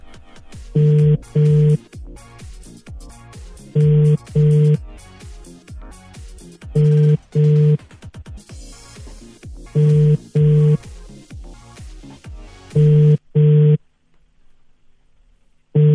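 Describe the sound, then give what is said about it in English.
A telephone ringback tone on an outgoing call purrs in a steady double-ring pattern, two short buzzes about every three seconds, five times, loud and clear over a faint, busy background that drops away near the end. “Right, it's ringing.”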